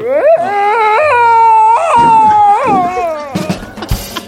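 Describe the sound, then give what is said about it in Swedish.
A person imitates a cat in heat: a loud, drawn-out, wavering yowl that swoops up and down in pitch for about three seconds, then trails off into a few short rustling noises. “Jag kan låta som en brunstig katt.”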